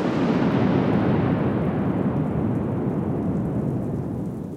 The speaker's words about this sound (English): Just then, a massive clap of thunder shook the foundation of the house.